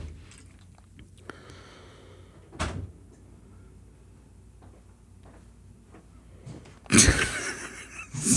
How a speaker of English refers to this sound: Door opens. Here he comes.